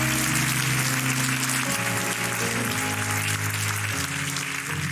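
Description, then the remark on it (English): A large church audience claps continuously and loudly as a hand clap offering of praise to God, a dense, steady wash of applause, with sustained organ or keyboard chords playing underneath and shifting every couple of seconds. “Come on, give God a hand clap offering one more time.”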